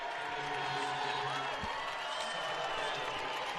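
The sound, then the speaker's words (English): A large arena crowd at a BYU versus Wyoming basketball game stands, roars and applauds the effort in a steady, dense wash of noise, with cheering and clapping blending together at a constant, fairly loud level. “Everyone standing and applauding the effort.”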